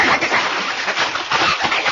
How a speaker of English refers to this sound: Pancho get his clothes off and Pancho feel the water with his big toe first. All right, then. I will have to splash you to get you used to it, Pancho.